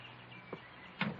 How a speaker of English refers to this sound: Come in and close the door.